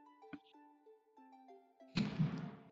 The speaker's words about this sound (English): What is that noise? There's a fireworks, don't mind it.